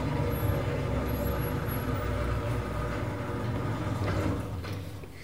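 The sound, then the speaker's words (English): A steady mechanical rumble and rattle with a grinding drone runs for several seconds, like a garage door rolling along its track, loud, easing off at the end. “I mean, that sounded like a garage door.”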